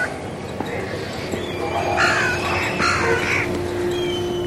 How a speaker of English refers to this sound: Ah, look at those big birds perched on the wall. Those are called kites, I think. Those birds that float above you in the city. They circle like vultures looking for tourists with jet lag.